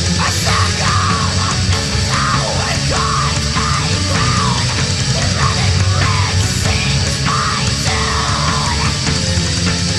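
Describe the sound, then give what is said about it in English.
Loud, dense folk metal blares nonstop, a chaotic wall of distorted instruments with a bouncy, goofy-sounding keyboard melody riding on top. No one speaks. “There's something really goofy about the keyboards.”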